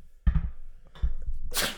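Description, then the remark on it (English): Someone blows their nose: a brief, forceful burst of airy, hissing noise that follows a couple of dull, muffled thumps, with no talking. “I got to blow my nose here.”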